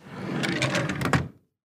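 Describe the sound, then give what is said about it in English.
A desk drawer slides open with a rumbling scrape, a folder drops inside with a soft thud, and the drawer is pushed shut with a final knock. No talking. “reaches down and opens a desk drawer, then drops the folder in and closes it.”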